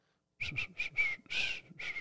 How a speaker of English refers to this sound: You can't whistle? Not really. Dude, what are you doing? That's like... Can you do that like finger whistle? No, what were you just doing? That's that was like a starfish scraping along a coral reef.